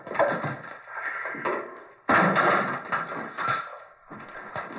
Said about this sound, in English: Drag a couple of those chairs together. There's a socket over here.